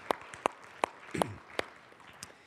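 A few sharp, isolated hand claps, about six, land at a steady, slightly uneven pace and fade out rather than building into full applause, at a church, applauding guest speakers. The claps are fairly quiet, and no one speaks.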